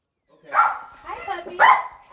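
A dog being dog-sat at a Los Angeles home overlooking a canyon barks a couple of times, two sharp, loud yaps about a second apart with softer whining or vocal noise between them.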